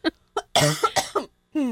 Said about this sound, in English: It's also allergy season, so if you have to listen to us cough all day, I'm so sorry because I'm doing it too